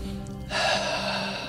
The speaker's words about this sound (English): The B in ABRA stands for breathe. Breathe. Take a breath now.